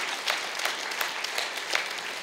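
An audience breaks into steady applause, a dense wash of many hands clapping at an even level with no voices on top, lasting a couple of seconds.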